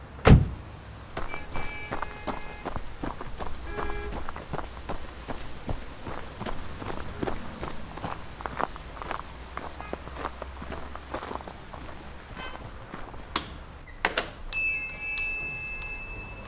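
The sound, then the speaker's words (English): Steady footsteps of someone walking into a room at an even pace, moderately loud, over a low rumbling background, with a sharper knock or bump near the end. “The man that walked in here before me, where did he go?”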